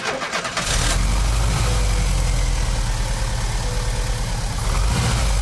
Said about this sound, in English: I quickly removed the spring and bent it to increase its pressure against the cam. Then replaced it and the distributor cap, and the engine sprang to life with the first press of the starter button.